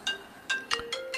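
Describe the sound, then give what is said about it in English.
A phone ringtone chirps during a recorded interview, a quick series of short electronic tone bursts, fairly quiet and repeating about every half second, with no talking over it. “Everybody that comes on Talking Energy Show at least gets several phone calls during it, because we are luckily not live, and I can maybe edit that out.”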